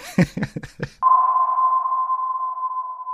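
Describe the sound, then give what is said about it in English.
An electronic cue signalling a favorite pinball segment: a quick run of four or five short, choppy blips is followed by a steady, unbroken electronic tone at a single mid pitch. The tone holds at even loudness for about two seconds. “Beep, beep, beep, beep, beep, beep, beep, beep. You heard that cue from Dennis.”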